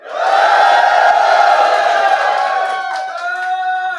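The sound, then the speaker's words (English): A live audience cheers and whoops for a song, loudly and steadily for several seconds, a dense wall of shouting voices with a few high yells cutting through before it starts to ease off. “Give me your cheer for ….”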